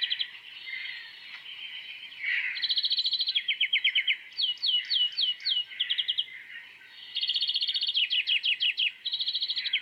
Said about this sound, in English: rated the highest for having a calmative restorative effect were the dunnock, and close behind was the green finch. Now, I will play both of these bird sounds back to back for you so you can hear what I mean and see what kind of effect it has on you.